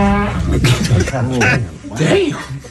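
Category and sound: human body sound, fart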